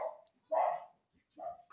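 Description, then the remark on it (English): A dog barks three times in short, separated bursts, moderately loud, with brief pauses between each bark. “My dog's randomly barking stuff.”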